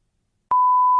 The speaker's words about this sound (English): Did you say his name? You gotta beep. I will it. Beep that out. Bleep it. I'll beep that out.